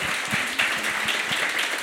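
A crowd breaks into steady applause, a dense wash of many hands clapping at once, moderately loud and continuous for a couple of seconds.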